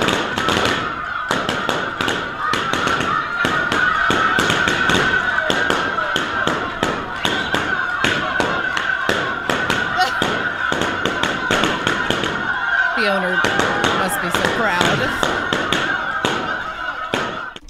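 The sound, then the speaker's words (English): Balloons burst one after another as a dog pops 100 balloons in a world record, a fast, irregular barrage of sharp loud bangs lasting almost the whole time, with brief squawking and voices near the end. “Well, maybe you'd be interested to know that they also just released the world record for some dude popping 100 balloons by a dog.”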